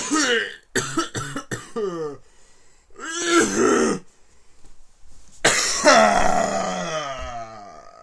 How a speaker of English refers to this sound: Yeah. That's a really bad cough.